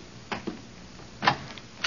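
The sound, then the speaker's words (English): A door handle is tried and the latch of an unlocked door gives: four sharp clicks spaced unevenly over two seconds, with a brief pause between pairs and a faint hush beneath, no voices. “Come on, let's try this door.”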